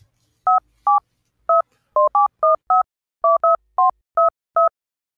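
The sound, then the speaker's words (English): A string of about eleven short touch-tone beeps from a phone keypad being dialed to make a call, each a clear dual-pitched tone, pressed at an uneven quick pace with brief silences between, fairly loud. “Hand me your phone there. I'm going to call Marty Ray.”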